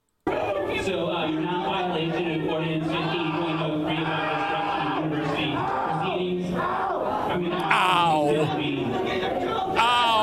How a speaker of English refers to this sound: And then these assholes start screaming. Look at the bad haircuts on this crew. Jesus. Look at this one. Holy shit. They start screaming like they're being assaulted.